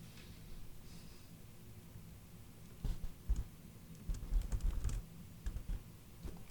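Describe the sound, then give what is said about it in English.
Quiet typing on a computer keyboard: scattered key clicks at first, then a denser burst of rapid keystrokes, trailing off into a few more taps over a low background hum. “Why is my keyboard not working?”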